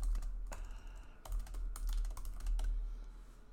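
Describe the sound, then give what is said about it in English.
Rapid typing on a computer keyboard, a steady patter of crisp key clicks with a few brief pauses, heard alone without any talking, as someone types a question into the internet. “I'm going to manifest this answer. Yeah. By typing it into the internet.”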